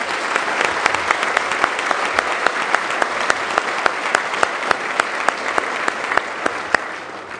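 An audience applauds the panelists steadily, a dense wash of clapping with sharp individual claps standing out, holding an even, moderately loud level throughout without any voices.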